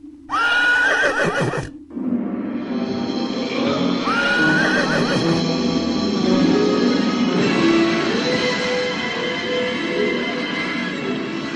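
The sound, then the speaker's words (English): A horse neighs loudly, a shrill, quavering whinny near the start, followed by a second whinny a few seconds later over a steady, busy background noise. “But a horse? No, sorry. That's not scientifically possible.”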